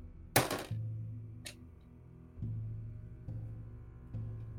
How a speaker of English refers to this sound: It's not even clacking around. It basically is like 9/10 the size of the gap between my hands. Just throw a few other dice in there just to hear the clack.